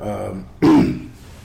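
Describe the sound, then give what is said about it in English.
A single short, harsh cough from a person still recovering from an illness bursts out, rough and throaty like a clearing of the throat, after a moment of soft low voicing, then fades into quiet. “You might hear a little cough.”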